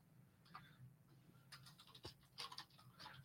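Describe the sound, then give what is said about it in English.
Quick bursts of typing on a computer keyboard, a cluster of clicks followed by a denser flurry of keystrokes, moderately loud over a low steady hum, with no voices. “I'm typing this in the show notes.”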